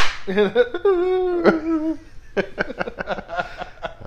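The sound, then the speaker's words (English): A single sharp slap to a man cracks out in the middle of his drawn-out, wailing cry, followed by quick chattering voices and laughter. “My favorite all-time episodes where you just slapped him and he cried.”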